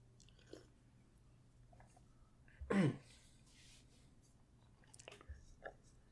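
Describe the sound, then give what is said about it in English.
A single loud sip and gulp from a drink near the middle, surrounded by near-silence, followed by a few faint mouth clicks and breaths toward the end. “I'm going to take a big sip of something, and then I'm going to read a whole bunch of text.”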